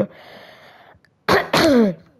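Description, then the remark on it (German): Two loud coughs in quick succession, the second a longer, rasping throat-clearing hack, following a moment of quiet room hum. “Also, ich muss gerade wirklich husten.”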